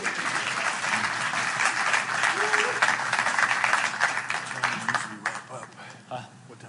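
A crowd applauds in a dense, steady patter of clapping that holds for several seconds, then thins out and fades toward the end.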